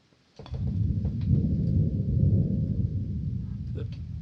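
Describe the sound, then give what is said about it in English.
A deep, rolling rumble of thunder breaks in suddenly after a brief silence and keeps growling steadily, loud and low, with faint crackles scattered through it as a storm approaches under low clouds. “That thunder means a storm's brewing.”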